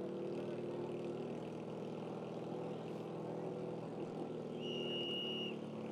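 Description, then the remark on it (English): The engine of Todd Strong's number 16 vintage race car, running second in a Saturday group two race, drones steadily and fairly loudly for several seconds as it passes the start-finish line, a buzzing, harmonic roar with no voices over it. “Here comes Strong in the 16 car.”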